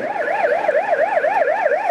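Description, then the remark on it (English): Sirens of hundreds of ambulances and fire engines lining the streets in Itaewon, Seoul, wail steadily with a rapid, warbling rise and fall, loud and continuous throughout, with no voices present. “Hundreds of ambulances and fire engines line the streets.”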